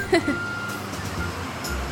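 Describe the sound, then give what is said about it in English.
Buses arriving at Camp Firefly rumble with a low engine drone, a steady high electronic tone running through, and a few brief tonal chirps near the start, with faint voices in the background. “Oh, buses.”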